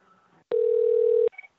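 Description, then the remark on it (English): A telephone call tone while calling an ENT, plastic surgery and audiology office to reach a doctor: one steady, mid-pitched electronic beep lasting under a second, clicking on and off sharply, with faint line noise and a brief higher blip around it. No one speaks. “All right, let's see if we can get the doctor on the line.”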